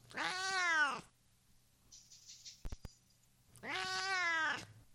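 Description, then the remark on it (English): Two drawn-out meows from a cat named Chairman Meow, each about a second long, with a pause between them filled by faint high rustling and a couple of sharp clicks. Loud, no one talking. “Hey, Chairman Meow, I got a question for you. How do you feel about this whole thing going on right now?”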